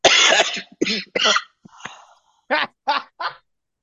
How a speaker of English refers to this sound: We're going to kill that cough. Here we go. We killed that cough.